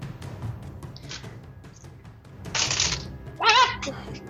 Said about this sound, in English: Drop the dice. Drop a dice.